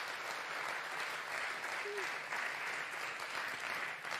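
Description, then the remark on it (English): A church audience claps steadily and continuously, celebrating God's faithfulness, a dense wash of applause for several seconds, with a brief faint vocal tone rising from the crowd partway through. “So why don't we give a round of applause for that?”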